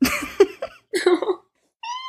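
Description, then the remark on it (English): A cat meows several times: a few short, rough cries, then a clearer, drawn-out tonal meow after a brief pause. No one speaks. “Oh, there's Lay. Come here, kitty.”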